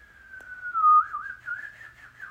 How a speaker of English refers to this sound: …, do a whistle.